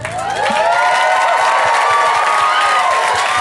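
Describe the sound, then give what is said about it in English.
A live audience at the end of the show I'm Too Effing High bursts into loud, sustained cheering and whooping with dense clapping underneath, the roar swelling after the first half second and holding steady throughout. “If no doubt you had a good time tonight, just clap and shout.”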